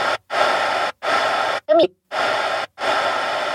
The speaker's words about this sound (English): The speaker sound system at the coffee shop had a lot of static.